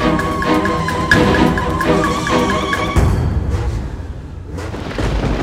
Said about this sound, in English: The storm's coming up fast. Oh! Whoa! Holy shit, look! That tree, the lightning split it! Oh my god, it's falling right on...